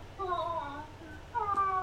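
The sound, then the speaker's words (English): Two stretches of high, wavering kitten-like mewling, thin and whiny with sliding pitch, steady in loudness, the second burst slightly louder than the first. “It's like kitten noises for some reason.”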